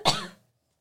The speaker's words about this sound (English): She's going to cough again. Go ahead.